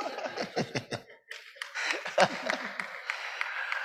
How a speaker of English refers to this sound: Oh, I thought she's clapping for me.